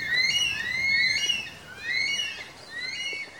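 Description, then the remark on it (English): A curlew's wailing, rising whistled calls come in two drawn-out bursts of overlapping high notes, fairly loud over a soft background hiss, with no one talking, in the bush among eucalypts. “It was a curlew.”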